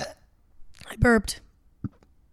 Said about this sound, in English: I keep burping.